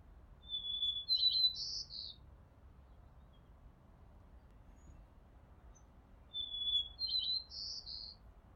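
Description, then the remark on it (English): A white-crowned sparrow in a backyard sings two clear, whistled phrases about five seconds apart, each opening with a thin sustained whistle and ending in buzzy trills, heard alone over a faint low background hum. “So, if you excuse me, I'm going to go and listen to the call of my backyard's white-crowned sparrow for just a little bit longer.”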